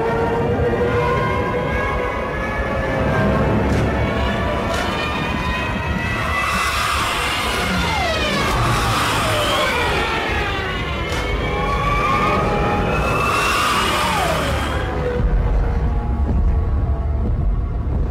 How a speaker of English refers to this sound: It's crazy that this sound, invented to scare the crap out of people when planes are dive bombing them, ended up being the hilarious sound of the Wile E. Coyote falling down into a cliff.